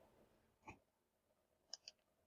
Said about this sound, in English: Excuse me, I coughed. I'm sorry.